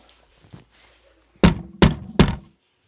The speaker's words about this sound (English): That day, when Captain Van Tock knocked on the door.